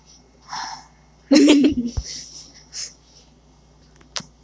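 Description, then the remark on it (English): A voice makes a short, loud, sputtering wet fart noise with the lips, about half a second long, surrounded by quieter breathy vocal sounds and a brief click near the end. “It wasn't a fart, it was wet. My butthole went.”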